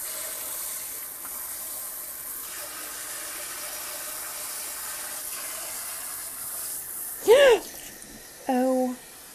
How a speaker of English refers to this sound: And now I need to clean out these stupid ramekins and these pots of nasty stuff.